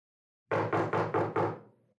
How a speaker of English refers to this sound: As the Shade and the Vamp scaled the drain pipe up to the attic window, Ian Flemish knocked on the front door.